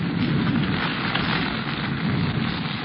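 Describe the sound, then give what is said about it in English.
Heavy jungle rain from a sudden storm pours down on a clearing in a steady, dense, loud roar, with no pauses and no voices, just a continuous wash of downpour. “Jungle rain come fast. Rain very hard, then go fast.”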